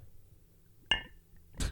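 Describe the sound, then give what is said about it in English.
A heavy glass bottle clunks once with a sharp, briefly ringing knock as a drink is poured from it, followed moments later by a shorter, duller bump against a low background rumble. “Ladies and gentlemen, he was trying to do that very tenderly, and instead the very heavy glass bottle just smashed.”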